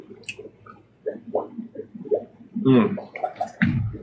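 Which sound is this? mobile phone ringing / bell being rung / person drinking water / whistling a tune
person drinking water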